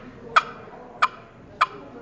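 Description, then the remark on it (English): Three sharp, separate turkey hen clucks from a Turpin-style box call, imitating the rich rasp of an old hen. They are evenly spaced about two-thirds of a second apart, each a short raspy pop with no talking. “And but I really like the rich rasp of the old hen that it puts out in the cluck, and this is a cluck.”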